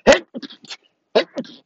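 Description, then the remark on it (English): Two loud, sharp sneezes about a second apart, each burst followed by a few softer sniffs and breathy sounds, with no talking. “Sorry, I had to sneeze.”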